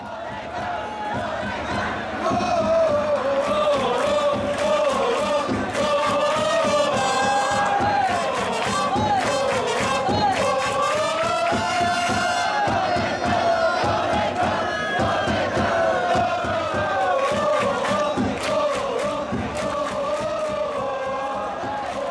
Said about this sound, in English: it leaves more time for fans synchronized chanting and cheer songs. So let's listen to a little bit of that from the Tokyo Dome